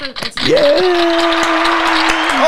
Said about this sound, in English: Wow, that's a double sound effect. I got lucky on that one. I kind of just hit the yellow one hoping it was the applause.